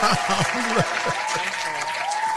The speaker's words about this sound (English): Cancel that applause.